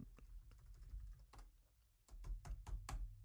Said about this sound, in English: Yeah, I know, but you're like typing. I don't. I can type.